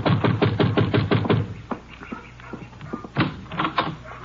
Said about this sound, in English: You better knock again.